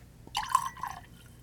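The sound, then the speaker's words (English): A brief splash of whiskey being poured into a glass, a quick burst of gurgling and dripping lasting under a second, fairly quiet, with no one talking. “Let's go ahead and get that poured.”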